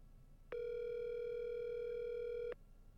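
A phone rings on an outgoing call to the speaker's mother: a single steady electronic ringback tone lasting about two seconds, loud, with quiet background before and after and no talking.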